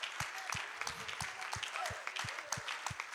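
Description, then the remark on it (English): A crowd of people clapping together in praise to the Lord in a steady rhythm, with strong low thumps landing about every third of a second under a dense wash of scattered hand claps. “Let's give him one more hand clap Un aplauso of praise.”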